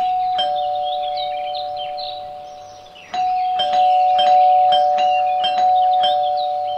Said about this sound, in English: She ran to the house and knocked. No answer. She rang the bell.